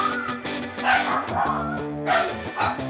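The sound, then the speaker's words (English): A small dog, a dachshund, barks in a quick run of sharp, high yaps, several in a row, with no one talking over it. “This podcast is brought to you by Wiener Dogs.”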